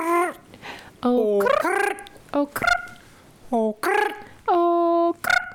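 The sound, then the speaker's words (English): A person makes a series of squawky, warbling vocal calls imitating a bird, with sharp pitch swoops and short bursts separated by brief pauses, fairly loud. “Oh, you sound like a bird.”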